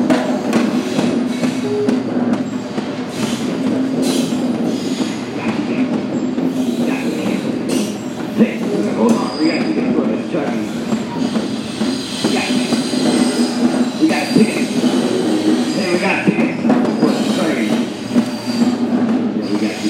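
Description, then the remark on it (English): A train rolls steadily along the rails with a continuous rumble, rattling wagon noise and occasional high wheel squeals, loud for the whole stretch, with faint voices in the background. “You get a ticket from that person, you get on that train.”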